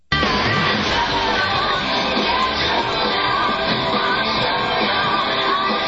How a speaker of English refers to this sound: that's … in the background. Yes. And is she singing? Yeah, that was … singing. Or is she screeching?